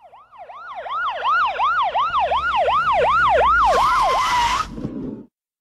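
A loud, close ambulance siren cycles through a quick, repeating rise-and-fall wail about a dozen times, then a harsh noisy blast briefly overlaps before everything cuts off abruptly.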